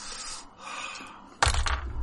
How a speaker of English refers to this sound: It's me rolling dice.